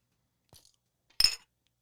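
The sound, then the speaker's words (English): Shot glasses clink together once in a toast, a bright chink with a brief ringing tone, preceded by a soft faint tap. No voices are heard. “This shot's been sitting here for a while, so we're going to go ahead and take it. I need it after all that sports talk. So cheers, boys.”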